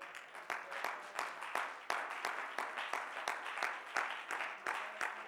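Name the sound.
audience clapping hands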